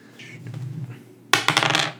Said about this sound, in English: It's a lot of dice